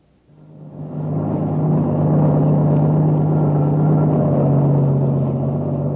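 A heavy truck engine drones steadily on a highway, rising in over the first second and then holding a constant low rumble with a strong hum. No voices.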